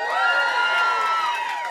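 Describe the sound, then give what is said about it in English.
A Tiny Desk concert audience cheers and whoops loudly, a dense wash of overlapping voices and high shouts held at a steady level throughout, with no distinct words coming through. “If you're here, make some noise.”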